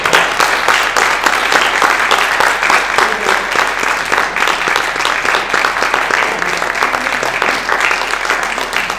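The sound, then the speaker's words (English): Sustained applause from a church audience, dense overlapping hand claps forming a steady, loud wash of sharp bright slaps that continues without pause. “You got a better hand clap than I did.”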